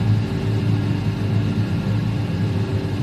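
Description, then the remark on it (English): Electric propellers on the wings of an Alaya 250 aircraft whir during a simulated vertical takeoff in a flight simulator, a steady, loud drone with a deep rumbling hum underneath, holding constant for a few seconds with no voices present. “there is a flight simulator to bring Newton's descriptions to life”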